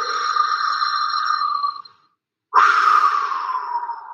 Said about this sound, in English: So let's breathe in. La. Let's take a deep breath in and empty out.